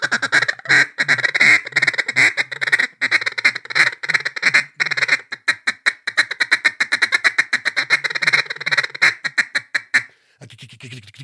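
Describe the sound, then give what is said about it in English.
A handheld duck call blown in long, rapid strings of quacks, imitating a mallard hen's greeting call. The notes are loud, speeding up into a steady descending cadence before a brief pause. “I started going a little bit fast and started adding in some greeters”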